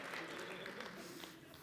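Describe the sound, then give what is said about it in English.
An audience claps during a sermon in a steady, scattered patter that stays fairly subdued throughout, with no clear voices over it. “I'm preaching better than you're clapping, I'll tell you that.”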